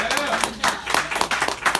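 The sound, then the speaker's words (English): A crowd claps steadily in irregular bursts, a moderately loud wash of applause with a faint voice briefly audible underneath at the start. “Give her a round of applause, please.”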